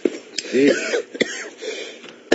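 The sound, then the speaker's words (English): A man coughs and clears his throat, with a few short, sharp bursts spaced across the moment and some rough vocal noise in between. “That's not me coughing, ladies and gentlemen.”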